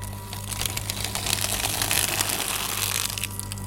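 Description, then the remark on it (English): A paper shredder runs with a steady motor hum as a performer feeds in each sheet of paper after reading from it, giving a continuous dense crunching and crinkling that swells slightly mid-way. Fairly loud, no voices. “And with each piece of paper that he reads from, after he's done, he feeds it to the shredder.”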